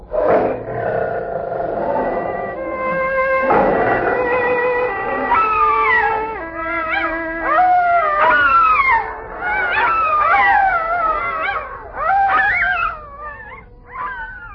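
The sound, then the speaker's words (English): A wolfhound, the wolfhound of the Tuskervilles, howls in a series of long, wavering cries that rise and fall in pitch, loud, with steady sustained tones beneath them and no talking. “I'll deal with the wolfhound of the Tuskervilles.”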